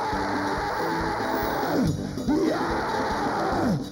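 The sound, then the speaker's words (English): An audience shouts prayers aloud together, a dense, continuous roar of many voices, with individual cries rising and falling throughout. “Lift up your voice and pray whilst you are shouting.”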